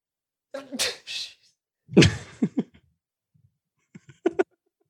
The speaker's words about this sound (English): No, I was like, I was sneezing and I was scrambling to find the mute button and I just ran out of time, so I'm sorry.